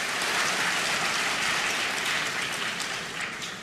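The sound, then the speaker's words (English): A large audience at an awards ceremony reacts to a speaker declining an award with a steady wash of clapping mixed with booing, dense and loud throughout, tapering slightly toward the end; no one speaks over it. “People are booing. Some are clapping.”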